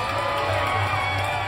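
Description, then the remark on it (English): A crowd in the town of Kukliath cheers in jubilation after an effigy is burned, a dense, steady roar of many overlapping shouts and whoops that stays loud and unbroken for the whole short moment. “The crowd surrounding me exploded in jubilation, all of Kukliath resounding with joy.”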